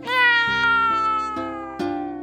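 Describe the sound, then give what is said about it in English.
A cat named Dolly lets out one long, drawn-out meow that slowly falls in pitch, loud, with no other sounds around it. “Suddenly, Nora heard her cat Dolly from Earth.”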